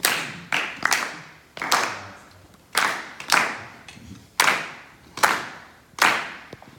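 Several people clap together in a 3-2 son clave rhythm. Sharp, bright claps are grouped unevenly in a repeating three-then-two feel, each with a brief ringing tail, with no voices.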